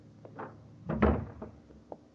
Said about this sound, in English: Close the door.